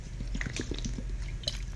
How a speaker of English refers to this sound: Now I'm drinking an essentia water. It's so important to hydrate.